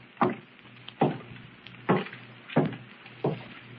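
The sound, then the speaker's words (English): Someone walks upstairs: five slow, dull footsteps thud overhead at an even pace, each a muffled woody knock, over a faint low hum with no voices. “Footsteps. Someone's upstairs. No doubt about it.”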